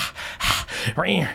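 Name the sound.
voice imitating panting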